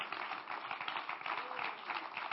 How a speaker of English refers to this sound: Would you clap your hands to the Lord and give him praise for his word today?